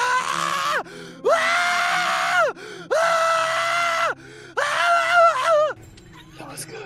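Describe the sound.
A person acts out tormented screaming: four long, loud, anguished wails, each about a second long and separated by brief gasping pauses, then quiet.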